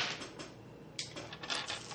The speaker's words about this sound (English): So go ahead and roll your five dice, body plus athletics plus two. Everybody roll their dice.